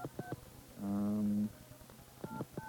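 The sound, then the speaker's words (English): Touch-tone dialing beeps of a call to Springfield, Ohio: a quick pair of clear tones at the start and two more near the end, with a longer, buzzier tone in between. Distinct, with no one talking. “So we're calling to Springfield, Ohio for John Justice.”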